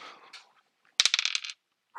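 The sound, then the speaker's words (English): A percentile die clatters onto a hard tabletop, a sharp first impact followed by a quick flurry of small rattling bounces that settle within about half a second, fairly loud; the roll comes up 90. “Oh, that's a percentile dice. That's the wrong one. I was like, I rolled a 90.”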